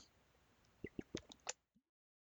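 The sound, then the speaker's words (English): Someone gulps a drink of Canada Dry ginger ale and lemonade in about five quick, wet swallows in steady rhythm. A faint low sound follows, then silence, with no talking. “Nobody wants to hear you gulp fucking shit.”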